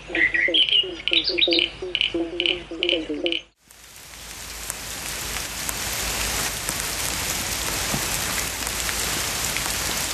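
A few seconds of chirping bird calls give way to a steady, dense hiss of rain pattering on surfaces outdoors at a very wet Reconciliation Day event on the hill at the Arboretum in Canberra, continuous to the end.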